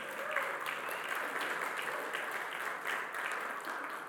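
A crowd claps steadily for about four seconds, a dense, even wash of many hands with occasional sharper accents, fairly loud and sustained with no one speaking over it.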